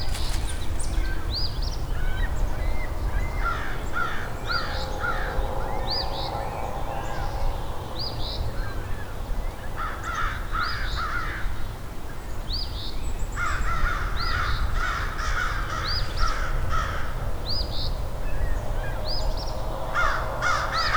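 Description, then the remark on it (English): Several crows perched right above caw harshly and insistently in rapid overlapping bursts, loud, over a steady low rumble of outdoor background noise. “Some very unhappy crows here.”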